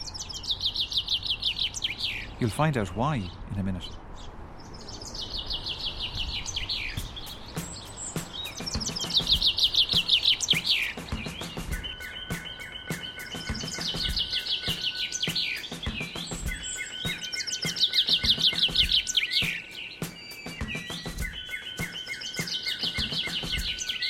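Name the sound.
bird song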